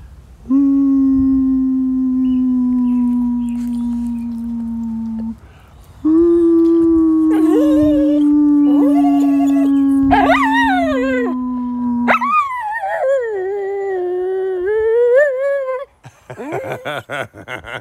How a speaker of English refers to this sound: I could get her to howl for you if you want to hear it.